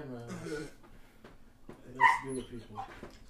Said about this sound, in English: My dog doesn't stop crying. He's going to be adopted.